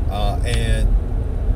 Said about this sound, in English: I'm actually recording this in the car, which is something I've never done, so this is kind of interesting.